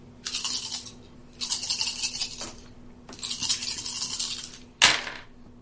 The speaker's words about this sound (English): You have a 6-man brute squad. Just roll 6 dice.